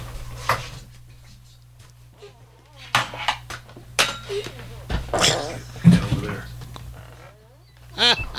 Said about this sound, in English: Jesus. Those noises. It sounded like you just murdered that cat.